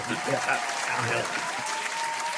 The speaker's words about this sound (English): You know, Baker Mayfield was given the boot. So. Little hand clap.